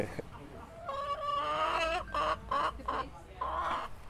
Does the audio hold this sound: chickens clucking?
yes